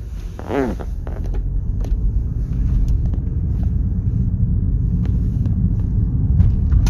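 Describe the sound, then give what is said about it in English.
A car drives along a road in traffic with a steady low rumble of engine and tires, a brief whining tone near the start and scattered faint clicks and knocks throughout. “There's some way fucking stupid people in traffic right now.”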